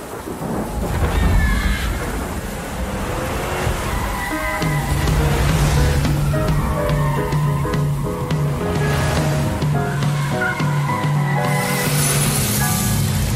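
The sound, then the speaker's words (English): A rough, rumbling old car engine in a side-scrolling video game drones steadily, its low hum settling into a constant tone partway through amid a noisy, rattling wash, with no one speaking. “Okay, old car.”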